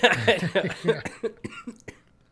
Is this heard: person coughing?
yes